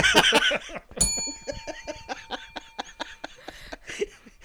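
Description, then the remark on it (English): A single bright bell is struck once, its ring hanging and fading over a couple of seconds while several people laugh and snicker around it. “If I said they're a package deal, would you hit that bell?”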